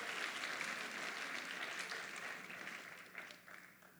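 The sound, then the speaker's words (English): A crowd applauds to welcome a guest onto the stage, a dense, steady wash of clapping that holds strong, then begins to thin and fade toward the end. No one speaks over it. “Let's welcome him with a strong round of applause.”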